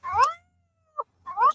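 A female domestic cat meows twice, with long, rising-and-falling harmonic cries separated by a short chirp in between. The calls are clear, with no talking.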